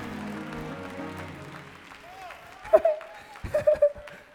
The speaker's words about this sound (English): Clap your hands and say, let go. Woo, and let God. Keep clapping till you let go. Keep clapping. Y'all ain't let go yet.